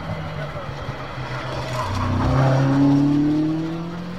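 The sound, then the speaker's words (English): A Ferrari 308 GTV's engine and exhaust pass by, the note climbing in pitch as it swells loud in the middle and then starts to fade, over steady outdoor background noise. “It's a Ferrari 308 GTV, yes?”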